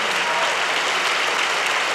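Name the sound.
audience clapping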